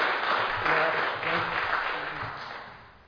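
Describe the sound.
A round of applause from a crowd, a dense, steady wash of many hands clapping that gradually tapers off toward the end, with faint murmuring voices beneath it.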